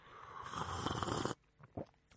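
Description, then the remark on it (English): A long, loud airy slurp from a mug of hot drink lasts over a second and cuts off sharply, then a brief softer sip or gulp follows. “I've got a second mug of this delicious drink. Can you guess what it is? Listen, I'm going to slurp it.”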